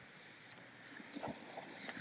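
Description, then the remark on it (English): A dog named Bud sniffs around, with short soft snuffling bursts and faint scuffling over a steady low hiss; no one speaks. “And Bud, sniffing around.”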